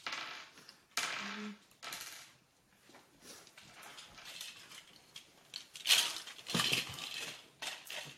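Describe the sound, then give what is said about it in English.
Small hard objects clatter and rattle against a tabletop in repeated bursts, like dice being handled, rolled and shaken, fairly clear with short clicks in between. “Ah, yes, your dice.”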